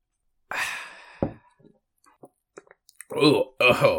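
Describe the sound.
A loud, airy slurp of a drink taken on a microphone, followed by a sharp click and a few soft swallowing ticks, then two short voiced exhales after the gulp.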